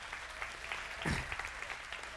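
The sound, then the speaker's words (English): A crowd claps for the speaker's father, who is seated in the front row. The clapping is steady for a couple of seconds, a dense wash of hand claps with a brief, fuller swell in the middle, moderately loud, with no one speaking. “Let's give my dad a hand clap.”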